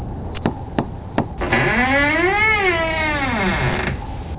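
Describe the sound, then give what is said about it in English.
A few sharp knocks on the door of a house at 2460 Grimsfield Lane are followed by a long, drawn-out creak of the door swinging open. Its pitched groan rises and then sags over about two seconds before stopping. “Door creaking open, that's ominous.”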